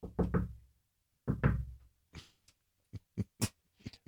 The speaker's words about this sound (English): So, hey, going by the window right now, I'm going to have to bang on the window. The Wilpons are going by.